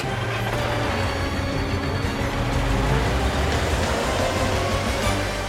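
A toy race car named Carl drives through the streets to downtown with a steady, buzzing engine hum and a low rumble that holds constant for several seconds, with no voices.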